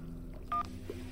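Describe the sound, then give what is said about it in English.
A single short electronic keypad beep from a cell phone, clear, followed by a faint blip against a low steady background hum. “Hey, try your phone, Bobby. I nodded, pulled out my cell.”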